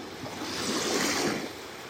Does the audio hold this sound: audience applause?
no